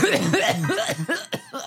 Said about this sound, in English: No, Spider-Man definitely does not have a stomach nor a cough like that.